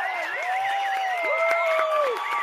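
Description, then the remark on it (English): A round of applause sound effect played to congratulate the best manager of the week: dense, steady clapping with sharp crackles throughout, overlaid by sustained, wavering whistle-like tones, at an even, fairly loud level with no talking. “I'm going to have to look to see where did I bury the round of applause.”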